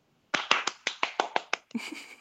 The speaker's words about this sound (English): That deserves a round of applause.